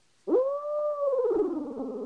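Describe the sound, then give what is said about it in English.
An owl hooter call, with the roll made in the throat: one strong, steady tonal hoot that slides downward and breaks into a rough, fluttering throat roll, sounding alone for about two seconds. “So on an owl hooter, you hit that, you know, with your throat, you got that.”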